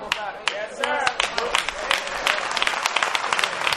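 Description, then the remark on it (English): An audience claps in a dense, uneven patter of sharp, overlapping hand claps that runs throughout, with some voices mixed in beneath the applause, especially near the start. “Oh, some folk can't clap, Elder.”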